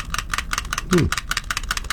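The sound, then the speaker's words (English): A stapler shaken in a quick, steady rhythm in a studio at 5 o'clock in the morning, giving about ten sharp metallic rattles in two seconds, with a short voice sound partway through. “it's me shaking a stapler this morning in the studio at 5 o'clock in the morning.”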